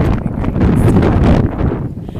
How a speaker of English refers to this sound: Forgive the sound of the wind that's pretty loud. Prayer by the Peace Bridge again. And it's quite windy, so most of our crews are not enjoying the water